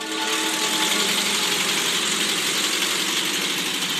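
A Volkswagen van engine idles steadily, a constant low rumble with a faint rattling vibration that holds an even level throughout, with no voices.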